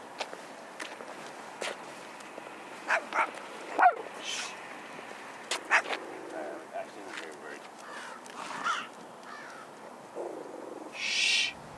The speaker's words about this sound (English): He barks a lot, but he knows that his territory only leads up to there.